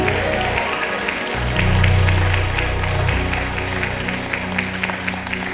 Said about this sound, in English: If you love him, you can clap your hands and love on Jesus just a little bit.